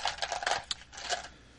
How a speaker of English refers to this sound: Should we roll some dice? Let's roll some dice.